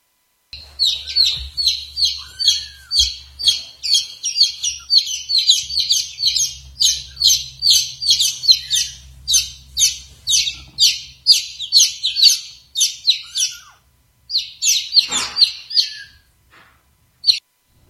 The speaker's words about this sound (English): At night, we could hear these chicks chirping throughout the day. It really was a mostly a joyful noise in our house for a while.